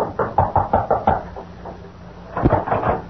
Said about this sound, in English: Then, after waiting a few moments longer, he approached and rapped on the door.